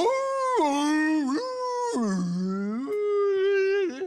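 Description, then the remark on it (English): A voice imitates a whale call with long, sustained moaning tones that swoop down and up in pitch, loud, with no other sounds around it. “I thought you could speak whale.”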